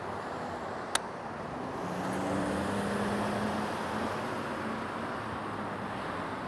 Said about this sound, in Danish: Der kommer også mange biler.